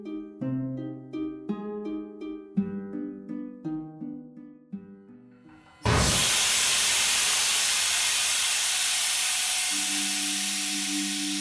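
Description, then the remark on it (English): After a few seconds of gentle melodic tones, a sudden loud burst of steam erupts from a pipe aboard a submarine and keeps hissing steadily and forcefully, with a low hum rising underneath near the end. “In front of me, steam burst out of a pipe.”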